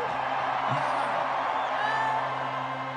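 A large concert crowd in Chicago roars steadily, with whoops and shouts rising out of the dense, sustained cheering throughout.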